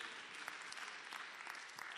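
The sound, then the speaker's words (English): An audience claps for the speaker's son at his request, steadily, a dense, continuous patter of many hands at even loudness for about two seconds, with no voices over it. “Please clap for my son.”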